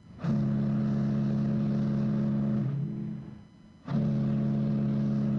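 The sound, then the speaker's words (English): A passenger ship's engine drones steadily at sea on a voyage from Japan to Hawaii, a loud, low mechanical hum that dips and fades briefly near the middle before surging back at full strength. No voices are heard. “The boat I sail on is called the Mexico de Maru.”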